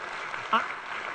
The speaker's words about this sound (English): Muhammad is dead and Jesus is alive. Because you can clap for that.